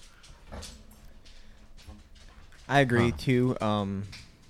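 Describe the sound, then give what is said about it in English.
After a few seconds of faint shuffling as dogs, including the mascot Nova, come into the room, a dog lets out a run of loud, high, drawn-out whines and whimpers, rising and falling in pitch. “Sorry, dogs just came in.”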